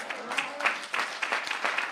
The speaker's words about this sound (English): And make that applause for all of our servicemen and women, past and present.